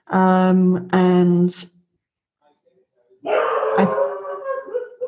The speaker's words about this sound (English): There's the dogs. Just so the listeners know, we prepared for the fact that there might be a doggy interruption. Just roll with that.